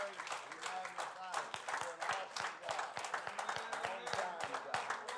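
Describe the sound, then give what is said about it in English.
A church audience claps hands steadily and fairly loudly for several seconds in praise of the Lord, the dense claps blending into applause, with voices calling out and singing over it. “Give the Lord another hand clap before we're seated.”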